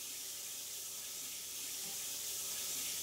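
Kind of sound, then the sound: household object, running shower water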